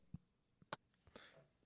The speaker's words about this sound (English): All right, I clapped it in.